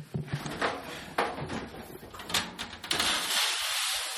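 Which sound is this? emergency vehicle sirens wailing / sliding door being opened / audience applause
sliding door being opened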